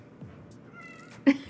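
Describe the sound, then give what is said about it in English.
A cat meows, a drawn-out tonal call that ends in a brief, louder squeak, with no talking over it. “Frankie does, she's meowing, right?”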